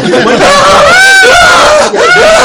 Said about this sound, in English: You hear what you think is a sound, but you realize it's just me screaming.